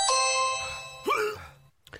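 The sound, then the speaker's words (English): A doorbell rings out a two-note ding-dong chime: a bright, ringing first tone that slowly fades, then a second note about a second later, trailing into near silence. “Hang on, there's someone at the door.”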